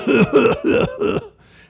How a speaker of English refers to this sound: That was my son coughing.